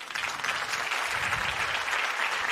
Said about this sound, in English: I'm going to actually clap for that.